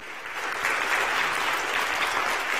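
An evening audience claps steadily in sustained applause as praise to God, a dense wash of many hands that swells after a brief start and holds at a fairly loud level throughout.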